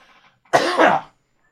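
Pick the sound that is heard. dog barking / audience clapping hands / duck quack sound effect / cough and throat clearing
cough and throat clearing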